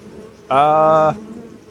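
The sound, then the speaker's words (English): A loud, steady bee buzz sounds for well under a second, starting and stopping abruptly against a faint low background hum. “Imagine, like, driving, commuting to work, and listening to these bees.”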